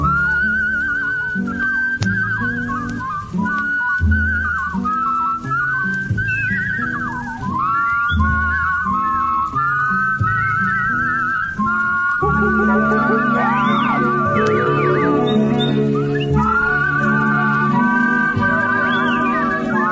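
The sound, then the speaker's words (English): Several whistled melody lines weave together in harmony over bright instrumental music, the Offenbach Barker Roll section from the original Tiki Room soundtrack, loud and continuous with quick trills and slides, and no one talking. “I was like, are those whistles harmonizing?”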